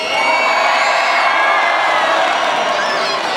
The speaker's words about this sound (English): But he's going to need some cheering. So we're going to do 3, 2, 1, and I want you to yell